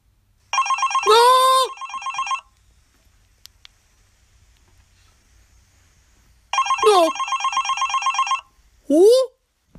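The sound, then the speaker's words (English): A cell phone ringtone plays in two bursts of steady electronic trilling separated by a few seconds of quiet, with short vocal exclamations breaking in over the ringing and once more just after it. “I got my cell phone back. I reactivated it.”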